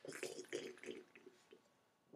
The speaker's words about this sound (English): Quick slurp.